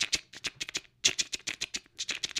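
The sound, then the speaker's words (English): A voice mimics the keyboard clicks of a phone with its keyboard sounds turned all the way up as someone texts during a movie: a quick, uneven run of short tongue clicks and ticks, fairly loud, with a brief pause midway. “Even worse, this fucking animal has their fucking keyboard sounds all the way up.”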